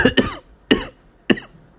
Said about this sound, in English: And then I realized what was happening, but I was coughing because of the weed that I smoked a little while ago before I came to the gas station. So I got up to the window super close and I start coughing and I said, pump on number 2.